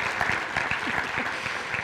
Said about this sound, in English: Can we give one more round of applause for all of our students and putting this together?